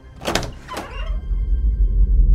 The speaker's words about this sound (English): With a deep breath, she steeled herself and unlocked the door, bracing for what she might find on the other side.